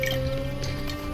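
Water sloshes inside a nearly empty water skin that is gripped by its narrow neck and shaken, with a couple of soft liquid splashes over a steady low hum, moderately quiet.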